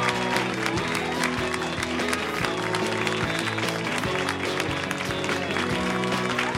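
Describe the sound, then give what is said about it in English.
A show audience claps steadily for several seconds as Pete Holmes from You Made It Weird is introduced, the dense applause gradually drawing together into a more unified rhythm, with a sustained tonal hum running underneath. “But it's going to be a really fun show tonight, so please put your hands together in a repeated clapping motion for Mr.”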